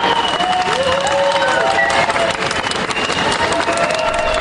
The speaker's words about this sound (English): that she's been released from the hospital, and that her fellow hospital staff gave her a standing ovation as she was wheeled out the door.